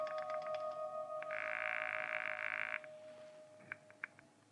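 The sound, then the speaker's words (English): A telephone being dialed: a quick run of sharp, evenly spaced clicks over a steady tone, a sustained buzzing burst, then a few more separate clicks. “So, with nothing more to lose than another millimeter off the tip of my index finger, I went back to dialing.”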